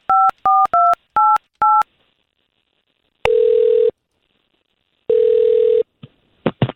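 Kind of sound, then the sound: signal or alarm, telephone keypad dialing tones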